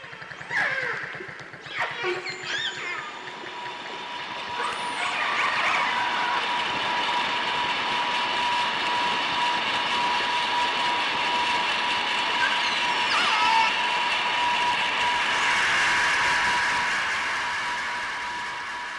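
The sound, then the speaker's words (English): Underwater, a passing boat's engine builds into a loud, steady mechanical drone with humming tones, swamping the faint dolphin whistles and clicks heard briefly at the start. “Just listen to this audio of how noise from a passing boat totally drowns out dolphin communication.”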